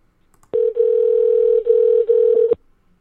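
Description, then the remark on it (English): The ringing tone of an outgoing phone call sounds alone: a steady, fairly loud electronic beep held for about two seconds with a few tiny breaks, then it cuts off abruptly. “You guys hear that ringing?”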